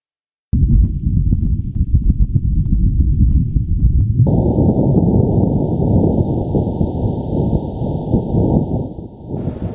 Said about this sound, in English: The wind's vibrations are being picked up by the InSight lander's seismometer, and air pressure sensors. It's a little hard to hear, so NASA tweaked the audio so we can hear it better.